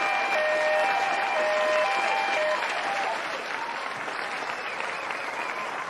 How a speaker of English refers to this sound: Yeah, let's give them a round of applause there.